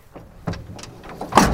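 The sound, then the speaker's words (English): A pickup truck's compartment door is shut: a few lighter clunks and rattles build up, then one loud, solid slam lands near the end. No one speaks. “If you were really thinking about it when you're closing up your truck because you put something in and you need to stay, and you close it like that, yeah.”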